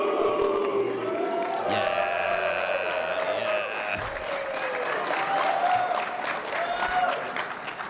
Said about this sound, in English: All right, so when I say scoop, you guys say scoop and do some cheering here. You guys ready for this? Scoop!